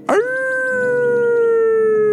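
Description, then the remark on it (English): A person imitates a werewolf howling at the moon: one loud, sustained wavering cry that holds steady and sags slightly in pitch for about two seconds, with no other sounds. “Go out and just hug a tree, put your face up against it, and look at the big, round, bright moon illuminating everything, and howl at it like a werewolf.”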